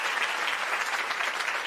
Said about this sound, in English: Whoops, let me get an applause here.